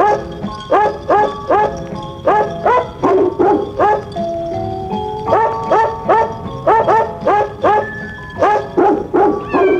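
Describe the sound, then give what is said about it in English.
Several dogs bark and yip in quick, irregular bursts, loud, their pitched barks overlapping into a ragged, almost musical chorus with no talking, as the dogs tune up before performing a song. “you listen to the dogs tuning up just before they go into their rendition of Jingle Bells”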